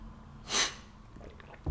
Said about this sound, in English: Oh, I did promise one final thing, so I need to have a sip of coffee before I tell you this terrible story. Hang on.